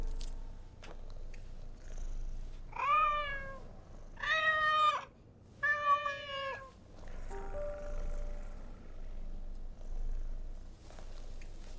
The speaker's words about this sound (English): Send in the cat.